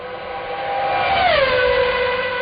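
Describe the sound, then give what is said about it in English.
A V8 engine roars with a steady, buzzing harmonic tone that drops in pitch about halfway through and settles lower, staying loud throughout with no one talking. “The V8 engine just sounds so good, doesn't it?”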